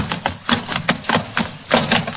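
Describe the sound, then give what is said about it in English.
A rapid series of sharp, loud crashes and splintering cracks as a lantern is smashed, with bursts of rattling debris following one another for about two seconds, no voices. “The lantern smashed.”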